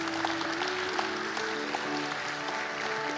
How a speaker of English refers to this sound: Can you clap your hands to Jesus tonight, please?